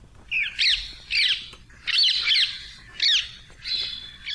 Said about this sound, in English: we've got the songs, or rather the squawks, of the introduced rose ring parakeet, and that's courtesy of recordings from the Mokaule Library at the Cornell Laboratory of Ornithology.